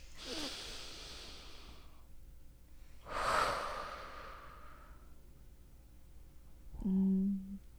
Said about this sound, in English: even it's just simple as that. Just a moment to like stop and breathe and ground into your body